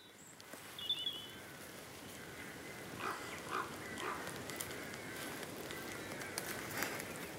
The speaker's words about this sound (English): It's a dog skittering past, and I think it's a rook or something in the distance. But I hope you can hear the sort of promise of spring just coming.